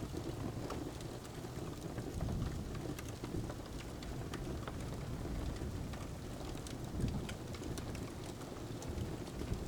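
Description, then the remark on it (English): Steady, soft rain patters continuously with dense, fine droplet ticks and a low rumbling wash underneath, even and unbroken throughout. “Even with the soft sounds of raindrops and the crackles of the fire, everything seems quiet and calm.”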